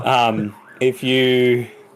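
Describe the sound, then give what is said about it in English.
A fire truck siren sounds as it drives past a house: two loud, steady, harmonic tones, the first half-second long and the second slightly longer, separated by a brief dip and a short blip. “So if you haven't given blood, I apologize, there is a fire truck driving past my house right now.”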